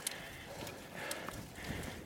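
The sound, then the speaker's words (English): Hooves clop unevenly on a hard country lane outside a city as cows plod past, the knocks soft over a steady outdoor hiss, with no one speaking. “So if the climbs aren't hard enough around here, you've got to contend with the livestock as well.”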